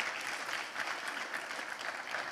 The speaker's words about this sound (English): Cheers to you, educators. Have a good holiday. Give the educators a round of applause. You guys are amazing.